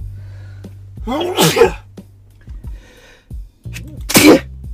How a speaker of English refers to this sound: I tried to get to the pause button, but I was like mid-sneeze. Not bad. I wasn't trying to sneeze on camera.